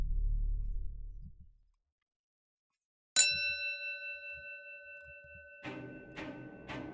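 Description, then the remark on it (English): A single bright strike of a hanging bell outside a pub rings out after a low rumble fades to silence, its metallic tone sustaining and slowly decaying, followed by faint shuffling and clinking sounds as a patron stumbles out of the door. “The hanging bell outside McCarrish Pub rang once more as one of the patrons, who was obviously drunk, stumbled their way out of the door and onto the street.”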